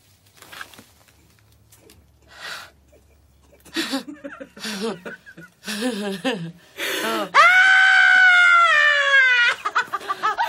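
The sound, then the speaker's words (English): A single voice mimics women screaming excitedly over 175,000 dollars: several short exclamatory bursts, then a loud, sustained, high-pitched shriek held for about two seconds. “These bitches lose their shit and they start screaming like, 175.”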